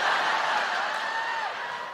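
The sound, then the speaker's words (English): A live audience in Auckland cheers loudly and steadily for a couple of seconds, a dense wash of many voices with a few higher whoops rising out of the roar, easing off slightly at the end. “Listen, just give us a cheer if you think you're in your licular phase right now.”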